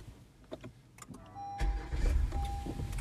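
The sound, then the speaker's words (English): A car engine cranks and catches after a few faint clicks, then settles into a steady low rumble that runs to the end, with no one speaking. “Because you see the way it started and shut off.”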